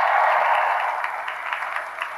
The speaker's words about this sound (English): And give a round of applause for our three volunteers.